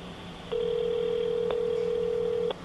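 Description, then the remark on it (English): A steady telephone dial tone hums for about two seconds, clear and moderately loud, with faint clicks where it starts, midway, and where it cuts off. No voices are heard. “That part means he's on the phone.”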